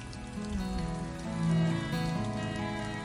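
Heavy, steady rain pours down on a dirt road, turning it to mud, in a dense, continuous hiss, with a low sustained musical tone running underneath and no voices.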